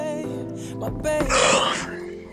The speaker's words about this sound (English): You gonna stop yawning to that goddamn microphone. That's yeah, all man. I'm I'm sleepy as a goddamn.